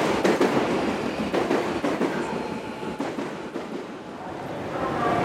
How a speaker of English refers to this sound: Jesus, this is a lot of trains.